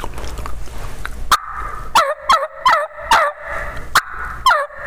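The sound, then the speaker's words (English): A turkey call played as a jake yelp, on the same call used for hen yelps, made by dropping all the pressure off the call and slowing the rhythm slightly: about seven raspy, low-pitched yelps in a slow, uneven rhythm, loud and clear after a short stretch of rustling noise, with no talking. “Well, I'm going to Jake yelp at him. And again, I'll demonstrate it here.”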